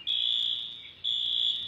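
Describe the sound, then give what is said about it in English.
A loud, piercing electronic alarm tone from building alarms on a flooded street at the Main and State intersection in Montpelier sounds in two long, steady bursts with a short dip between them, with no one speaking. “And this is what it sounds like. It's just the alarms keep going off.”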